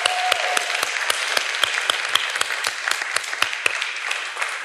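A crowd applauds panelists steadily as a band comes out on stage, a dense wash of many hands clapping with sharp individual claps standing out, sustained at an even, fairly loud level throughout without any talking.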